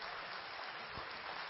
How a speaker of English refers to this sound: Somebody ought to give the Lord a hand clap.